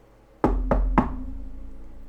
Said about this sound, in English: They had just restored the lava temple with the blazing crystals and were celebrating with their friends, Corin and Finn, at Sparlin Castle, when all of a sudden there came a knocking at their door.